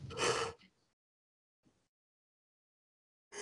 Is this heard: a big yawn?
yes